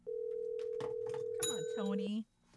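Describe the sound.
A steady, unbroken telephone ringing tone of an outgoing call hums for about two seconds, fairly loud, while voices talk briefly over the latter part before it cuts off.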